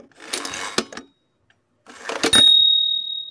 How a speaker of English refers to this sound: That's an old broken brailing machine. They're a little bit like typewriters. They've got this big heavy kind of thing. You slide it across when you're done, makes those clacky noises.